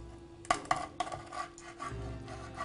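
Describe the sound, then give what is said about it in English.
A knife chops frogs on a cutting board, cutting each body in half and cutting off the legs, about five pieces per frog: three sharp, quick knocks in a row, followed by softer scraping and rustling as the pieces are moved around. “I'm basically just cutting the body in half and then cutting the legs off.”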